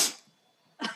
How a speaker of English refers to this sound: Throwing in a sniff for just for good measure.